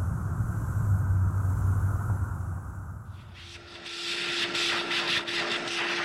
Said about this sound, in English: If you vacuum that rug anymore, there won't be any thread left.